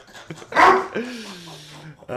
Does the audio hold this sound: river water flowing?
no